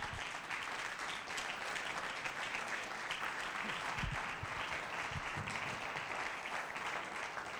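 Sustained audience applause at a church in Wisconsin as a guest speaker comes up, a dense steady crackle of many hands clapping at an even loudness throughout, with a few faint voices mixed in beneath it.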